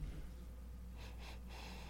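A person takes three quick, close sniffs in a row, short airy inhalations spaced evenly apart, as if smelling a drink, over a low steady background hum.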